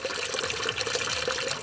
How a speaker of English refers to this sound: In the town of Borjomi, locals line up beside a public fountain to fill up big plastic jugs of mineral water for free. I step in line and fill up my own water bottle.